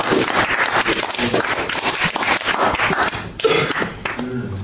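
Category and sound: crowd, audience clapping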